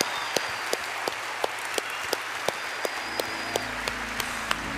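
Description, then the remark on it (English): A crowd at a worship service applauds and cheers people on as they come forward, with a dense wash of clapping punctuated by sharp claps landing on a steady, even beat. A faint high whistle-like tone rises above it, and a low hum enters toward the end. “Everyone cheer them on as they come.”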